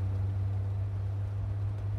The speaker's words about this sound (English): I'm just going to open 1 second the window so that you get the sense of it. Trucks, hitchhikers, honking, you know, the usual.